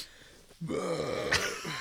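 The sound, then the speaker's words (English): After a short quiet pause, a single loud burp erupts after eating a hot pepper, rough and low-pitched, stretching out for over a second before trailing off. “Oh, that burp was spicy.”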